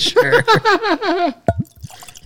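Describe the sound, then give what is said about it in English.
Whisky glugs from a bottle into a glass in several quick, rising gurgles, fairly loud, then a short splash and faint trickle as the pour ends. “Are we going to pour one for our dead homies?”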